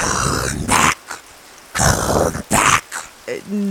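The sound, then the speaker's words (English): A dog growls and snarls in several rough, loud bursts separated by brief pauses, ending with a short, higher, whiny tone. “At least those two are still dogs.”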